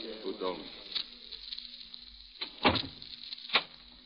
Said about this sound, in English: Why lock the door? So we can be alone.